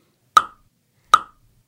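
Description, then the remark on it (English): Two sharp tongue clicks made by a man when he has finished working, evenly spaced and separated by silence, each a crisp, bright pop that fades quickly. No voices accompany them. “When he finished working, he just do that clicking sound with his tongue.”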